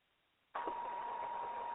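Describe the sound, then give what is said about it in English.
After a brief silence, a steady electronic tone switches on abruptly and holds at an even, moderately loud level, a single sustained mid-pitched beep with a faint buzzy edge, announcing another incoming call, text, or tweet. “Beep. got another call, text, or tweet.”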